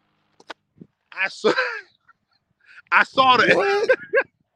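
Chickens squawk in two loud bursts of harsh, flapping cries, with a few faint clicks and short scuffles in between.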